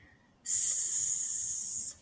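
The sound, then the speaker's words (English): A voice imitates a snake's hiss: one long, steady, sharp hiss lasting about a second and a half, loud, cutting off abruptly, with no talking around it. “Snake.”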